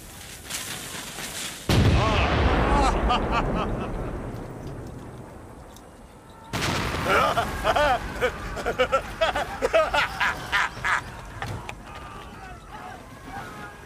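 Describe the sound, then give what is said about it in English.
A heavy cannon blast booms out as cannon fire at a range of 2,000 yards destroys barracks, followed by a long rumbling roar of collapse, then a second loud blast with crackling, crumbling debris and scattered impacts fading out. “I like these cannons of yours.”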